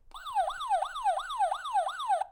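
A siren alarm wails in quick repeating cycles, each tone sweeping downward about six times in two seconds, loud with no voices, then cutting off abruptly.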